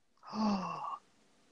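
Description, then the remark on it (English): A single sharp gasp of surprise, fairly loud, voiced and drawn out for under a second with a slightly falling pitch, then quiet. “I can tell by the way you gasped.”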